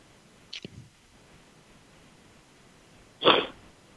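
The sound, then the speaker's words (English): Two short, rough bursts from someone clearing their throat while everyone else on the call is muted, a quick one early and a louder, harsher one a few seconds later, with quiet in between and no talking. “And I'm just going to put everyone on mute for 5 seconds while I clear my throat one more time.”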